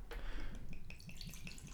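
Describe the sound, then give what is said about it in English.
A bottle of rye whiskey is uncorked with a short pop, followed by a steady pour with rhythmic, gurgling glugs of liquid. No voices are heard. “So should we pop this bad Larry open?”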